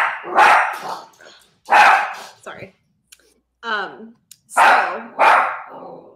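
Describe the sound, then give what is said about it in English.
A dog upset about a spider barks loudly in several sharp bursts, some in quick pairs, separated by short pauses, with a brief higher-pitched yelp in the middle. “My dog is really upset about the spider.”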